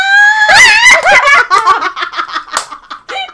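A loud, high-pitched scream from a male right up close to the microphone, starting as a sustained shriek and then breaking into choppy, giggly bursts of squealing.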